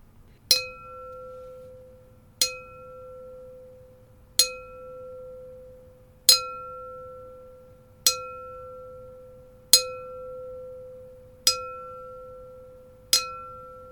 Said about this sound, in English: Just then, the patient help light lit up the nurse station console. Everyone was silent as the console rang out a slow E-flat bell tone.